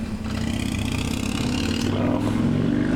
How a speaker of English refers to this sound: You're really cool. I really envy you and your really loud motorcycle, you 50-year-old.